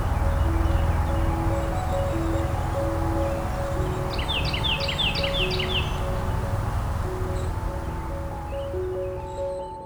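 A quick run of thin, very high-pitched triple-ring call notes of golden-crowned kinglets, about five or six in a row, rising faintly above a steady low rumble of traffic and droning tonal hum.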